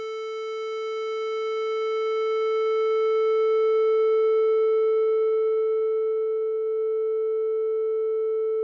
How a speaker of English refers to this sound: We can now add a low-pass filter to our distorted sound that once was a sine wave. We find that the sound changes back into a sine wave if we slowly close our filter.